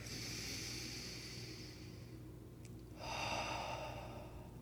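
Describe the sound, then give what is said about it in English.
A slow, deep inhale through the nose, a brief pause, then a long airy exhale through the mouth, soft, with no talking, during a guided body-scan breathing exercise. “And then take a deep breath through your nose. Exhale through your mouth.”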